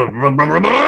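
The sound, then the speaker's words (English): A voice imitates a car starting and its engine roaring: one short, loud, buzzy hum that climbs steadily in pitch like an engine revving up, with no words spoken. “And all of a sudden, now it's like the engine needs to be working. It just roars and revs.”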